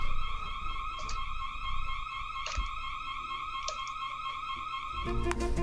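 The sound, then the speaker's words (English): A loud electronic alarm going off in a bar downstairs blares continuously with a steady, harsh tonal buzz, punctuated by brief clicks, with no one speaking. “there's an alarm coming out of a box that I've never seen before”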